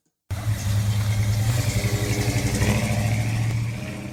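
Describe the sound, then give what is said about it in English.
A 1975 Chevy K10 truck engine idles steadily with a deep, throbbing low rumble and a slightly lumpy rhythm, fairly loud for about four seconds, with no one speaking. “That is a 1975 Chevy K10.”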